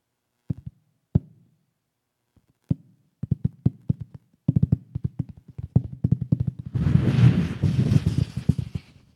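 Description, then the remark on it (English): Scattered sharp taps of first raindrops, sparse at first, then quickening into a dense patter until a broad hissing rush swells over the last couple of seconds. No one speaks. “First couple of drops.”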